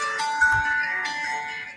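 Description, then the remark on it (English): A phone ringtone plays a short run of bright electronic melody notes at moderate volume, set against a steady, noisy background. “I love how you had your phone. How professional.”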